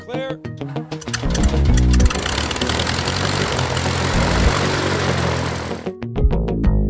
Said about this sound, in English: You're going to be hearing a little bit of background noise throughout the day, but it's just airplanes, so it's not really noise. Good background noise.